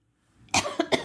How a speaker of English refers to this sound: My bad, my throat itching. God can't. I cough very serious just now. My bad. I did not mean to cough in your ear.